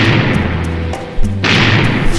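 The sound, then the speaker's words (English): Cannon fire from a pirate galleon's broadside at a Spanish fort: heavy, rumbling booms come in quick succession over a dense, roaring wall of low thunder, loud, with a sharper blast near the middle. “There's the sound of adventure. Cannon firing.”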